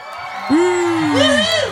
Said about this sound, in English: Wait. I got some cheering here.